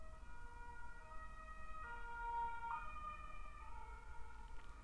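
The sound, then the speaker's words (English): An ambulance siren wails steadily and swells as it passes, its pitch dropping noticeably partway through, over a low rumble of road traffic. “Okay, let's wait the ambulance to pass.”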